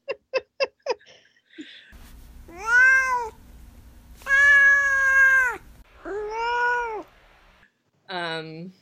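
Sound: cat meowing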